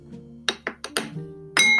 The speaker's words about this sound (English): Now, what I'm going to do is I'm going to add some water to some baking soda over here, and I'm going to stir that one up.